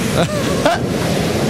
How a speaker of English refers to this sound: And there's big waves here, but I'm seeing like some big fish, and it's scary because it almost knocked over the boat 5 times.